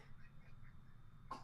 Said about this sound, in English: And quit coughing in my bed.